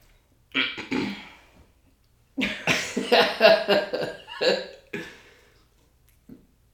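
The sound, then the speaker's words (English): A person getting over a cold coughs fairly loudly after drinking water, then a short pause before a rapid fit of several harsh coughs in a row, trailing off with one faint final cough. “I'm still getting over a cold, and all this water is gonna cause me to start coughing, which is bad.”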